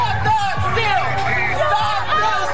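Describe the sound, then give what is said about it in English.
A large crowd of thousands of largely maskless protesters, supporters of the president, shouts and chants "This isn't over" together in the streets of Washington, DC, a dense wall of overlapping voices with occasional whoops rising above the steady roar, loud and continuous throughout. “The largely maskless crowd echoing his baseless claims about widespread voter fraud, chanting, "This isn't over."”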